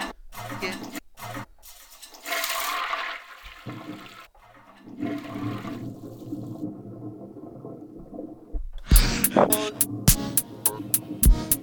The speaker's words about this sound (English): You know, I do like the toilet flush. But we need to make it... We need to make it interesting.